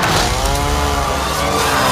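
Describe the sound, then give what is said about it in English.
A chainsaw roars continuously and loudly, its engine buzzing with a dense, harsh whine that holds steady for the whole stretch. “Okay, chainsaw.”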